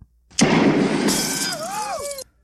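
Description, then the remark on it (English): A sharp, loud gunshot blast bursts out and rings on as a harsh noisy roar for nearly two seconds, with whining, bending tones near the end before it cuts off abruptly. “This is gunshot.”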